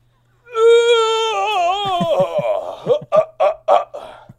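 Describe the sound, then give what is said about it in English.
A long, loud voiced yawn: a sustained, wavering tone that gradually sags in pitch, then breaks into a series of short, choppy breathy bursts, like chuckles, as it trails off. “That yawn just, like, put myself to sleep.”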